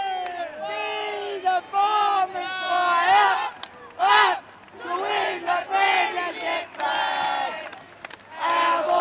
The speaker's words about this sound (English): With 5 minutes to go in the game, the cheer squad relax and begin singing.